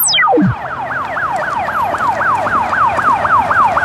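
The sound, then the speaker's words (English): Ambulance sirens wail loudly as ambulances arrive, in a fast, steady rising-and-falling warble. A quick downward swoosh at the very start leads into it, and no one speaks. “I can see ambulances arriving.”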